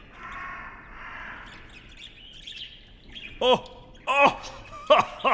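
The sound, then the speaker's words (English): A crow protecting her nest of babies gives three loud caws in quick succession near the end, each sweeping downward in pitch, following a stretch of muffled, murky background sound. “The crow is just protecting her babies.”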